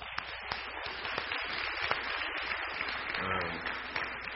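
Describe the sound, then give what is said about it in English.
A crowd in a gym claps steadily for the band in dense, continuous applause that holds at an even loudness for a few seconds, with a faint voice surfacing briefly near the end. “And let's give a round of applause for the band.”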